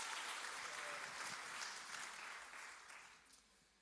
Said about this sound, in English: But before I say anything else, don't you think the stage looks absolutely amazing? I think our team needs a round of applause.